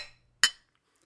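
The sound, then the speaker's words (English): A single bright, sharp clink of cups knocking together in a toast, ringing briefly before fading, with a softer trailing ring of a prior tap at the start. “they always have a coffee cup full of whiskey”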